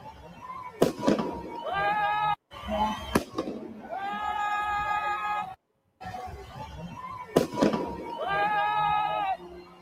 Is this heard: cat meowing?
no